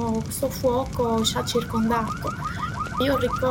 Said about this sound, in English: I remember in the background the sound of sirens, because we had a smoke alarm in the facility in the plant. Of course, the alarm started going off like crazy all night long, so I remember this noise.